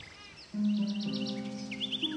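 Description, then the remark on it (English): A bird chirps in a quick series of short, high tweets as it flies by, over a steady low humming tone that starts partway through. “By the way, did you happen to hear the bird as it flew by?”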